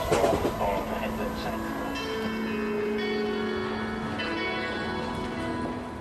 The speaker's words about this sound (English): This is Clapham Junction. This train is for Hounslow via Brentford. The next station is Wandsworth Town.